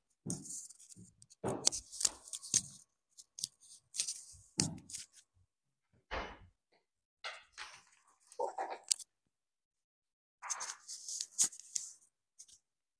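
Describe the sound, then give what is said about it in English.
Crisp papery rustling and crinkling in several short bursts with brief pauses between, moderately loud, as a sheet of paper is handled and put off to the side during a yoga practice. “So, you can put your paper off to the side and then come forward into a hands and knees position, pressing right back into downward facing dog.”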